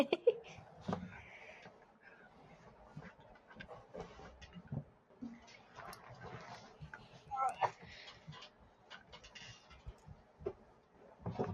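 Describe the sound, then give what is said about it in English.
A cat named Leon gives a couple of short, wavering meows amid shuffling noise and low, murmured human sounds, the cries brief and fairly faint. “Can you give me a second? I have to meow. Leon. Yeah, you hear him?”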